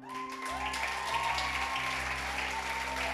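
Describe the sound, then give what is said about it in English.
An audience at a church camp meeting breaks into loud, sustained applause to celebrate the preacher's wife, a dense wash of clapping over a steady low organ or keyboard hum that holds throughout. “If you don't clap, I won't preach.”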